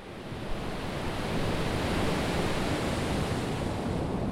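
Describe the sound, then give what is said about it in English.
Pacific Ocean surf washing onto a shore at Tijuana, Mexico, where the border wall ends in the ocean, in a steady, unbroken roar, fairly full, with no distinct breaks between waves and no voices. “All the way to the Pacific Ocean in Kumeyaay Land.”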